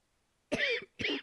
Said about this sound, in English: I'm about to die from my coughing, so good night, listeners.